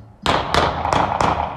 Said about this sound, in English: So last night, there was a ton of gunfire going off, and we're going to drop this clip in here.